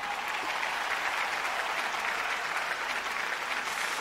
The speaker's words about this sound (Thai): ก่อนอื่นนะครับขอเสียงปรบมือให้พี่2ท่านนะครับ